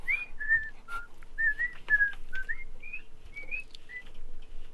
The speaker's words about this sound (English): He got ejected, so the person that was whistling...